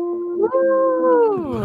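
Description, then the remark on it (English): Ghost noises made as a spooky intro: an eerie ghostly wail, a single sustained howling tone that holds steady, rises slightly, then slides downward in pitch at the end, fairly loud with no talking over it. “Ooh, that was a pretty spooky intro, too. Yeah. Very on brand for us. Cheers. Cool. It's ghost noises.”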